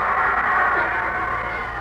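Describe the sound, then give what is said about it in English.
A stadium crowd at a football game cheers as the USC team comes out on the field, in a steady, loud, dense roar of many voices, holding level for about two seconds with no single voice standing out. “And just listen to that crowd.”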